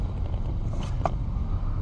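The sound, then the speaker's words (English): A steady, heavy engine rumble of big trucks rolling past, deep and continuous, with a brief brighter clatter near the end. “You know, oh, we stopped 2 trucks.”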